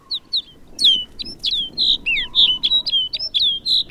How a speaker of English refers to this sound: Now it's clear that rolling white cloud isn't snow at all, but a flock of snow buntings. These birds bring the barren landscape to life.